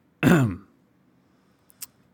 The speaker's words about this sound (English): Copyright that cough right now.